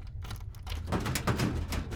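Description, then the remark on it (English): Small metallic clicks and rattles of a special key working the lock of a special drawer, followed by the drawer scraping and sliding open against a low background hum. “Special drawer, eh? Ah, a special key is my specialty.”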